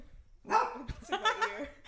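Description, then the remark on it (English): A dog named Chip barks several times in quick succession, sharp yips and woofs with a harmonic, slightly whiny edge, heard on its own without talk. “What is he barking at?”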